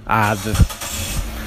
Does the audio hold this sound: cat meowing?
no